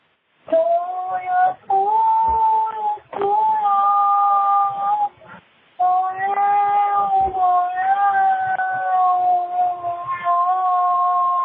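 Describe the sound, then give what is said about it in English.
A cat yowls in long, drawn-out wavering cries, loud, broken by a few short pauses across several seconds. “Yeah, maybe a cat. God, this is a cat.”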